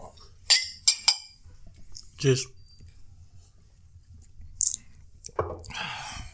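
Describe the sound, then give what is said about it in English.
Glasses clink together in a toast, three quick, bright taps, followed by soft rustling and a few muffled mouth and handling noises. “Cheers.”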